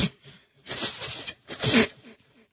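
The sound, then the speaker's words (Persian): Breathy, hissing puffs of air blown through the lips in a failed attempt to whistle, with no whistle tone, two main bursts around a softer one, each rising and fading, with no voices. “دیدی فقط صدای باد دادی.”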